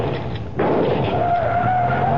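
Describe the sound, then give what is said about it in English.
An armor-plated car with bulletproof glass roars by loud, its engine noise surging in suddenly after a brief quieter moment, with a thin tire squeal whining over the rumble. “His car is plated with armor.”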